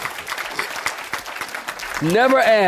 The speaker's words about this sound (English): Somebody clap your hands and say amen, Pastor.